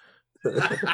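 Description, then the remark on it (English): A single harsh, rasping cough bursts out loud after a brief near-silent pause, its rough sound filling the last half second. “Sounds like a dog of a cough you've got there, mate.”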